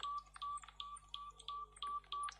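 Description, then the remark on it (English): An aura detector, cranked up to 120 and showing a negative sign, beeps rapidly and repeatedly, about seven short, steady, high-pitched tones in quick regular succession, each with a clear bright ring, with no voices. “Why is it just beeping a lot?”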